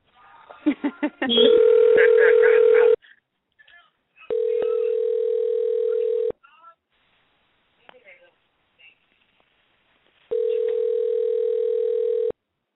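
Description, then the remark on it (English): A phone call to a friend is dialed with a quick burst of short tones while several people are on the line, then a steady ringing tone sounds three times in long, evenly spaced rings, loud and clear with silences between. “Let's try her calling her one more time while we're all on the line.”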